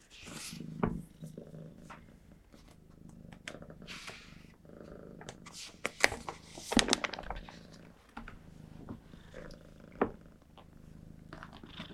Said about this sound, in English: Okay, 1 second, Kitty.